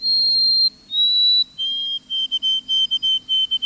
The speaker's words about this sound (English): The white-throated sparrow's melancholy whistle is hauntingly beautiful. Some birders remember the syllables of the tune as Old Sam Peabody, Peabody, Peabody.